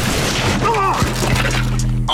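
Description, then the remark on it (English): A snack table, caused to break by Brashawn Bettis, smashes and shatters with a couple of sharp crashing impacts, heard amid a loud, steady wash of crowd noise and background chatter. “Brashawn Bettis caused a snack table to shatter.”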